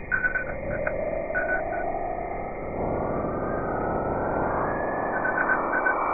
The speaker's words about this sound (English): And then when you actually hear the beep, beep, beep, beep, beep.